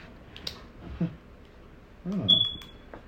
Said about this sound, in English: But that's a double alarm beep right there.